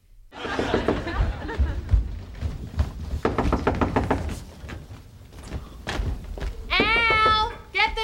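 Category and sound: impact, knock on a door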